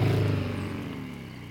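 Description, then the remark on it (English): A car engine turns over and rumbles loudly, its deep steady drone tapering off slightly over a second and a half, with no voices. “The engine started.”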